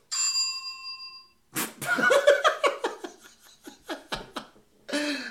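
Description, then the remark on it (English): A single bright desk-bell ding rings out clearly and fades over about a second, followed by bursts of laughter and another ringing tone starting right at the end. “Y'all, it only rings once. I have the doorbell. No, there's another one. What it's, about, It's the boxing bell. Mine just says desk bell.”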